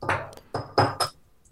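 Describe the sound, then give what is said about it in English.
A shot glass clinks several times in quick, uneven succession, each bright knock leaving a short ringing tone, followed by a faint final tap. “Okay, here's my fucking shot glass.”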